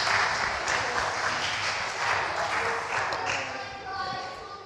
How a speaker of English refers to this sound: Round of applause for these people.